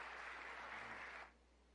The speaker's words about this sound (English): if we could just give a big hand clap for Pastor Guy Rimestad